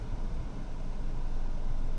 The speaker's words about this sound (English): I'm going to turn on the car. We need AC. It's fucking hot in this bitch.